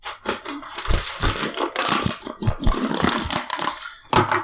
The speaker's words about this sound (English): The winner is... You got to open the envelope really loud.